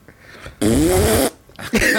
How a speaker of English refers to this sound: Get a fart sound.